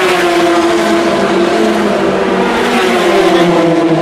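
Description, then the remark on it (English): GT race cars roar past at speed, a loud, continuous engine drone with steady harmonic tones that swell slightly as the cars go by, with no voices. “Those are the GT cars go through.”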